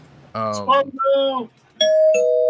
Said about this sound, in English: Spoiler bell.